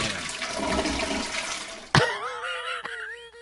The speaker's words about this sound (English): Pre-flusher. Premature flushing. I wasn't quite done.